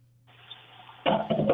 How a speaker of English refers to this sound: He's flushing a toilet.